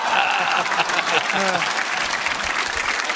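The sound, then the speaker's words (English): An audience claps steadily, a dense, even wash of hand claps that stays loud throughout, with a brief voice or cheer rising faintly above it near the middle. “They're clapping way too much.”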